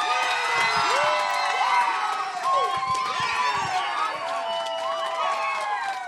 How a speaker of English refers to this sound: So if you will, give her a warm round of applause, my wonderful wife.